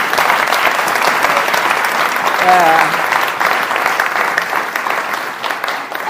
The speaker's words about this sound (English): Well done. Fantastic. Let's just give these guys a round of applause.